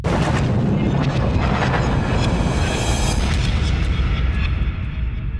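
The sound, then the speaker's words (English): A huge explosion, the big bang, rendered as a continuous, loud roaring rumble with heavy low-end crackle, sustained for several seconds without fading much. No voices. “It sounded kind of like a bang to me. A bang? A big bang?”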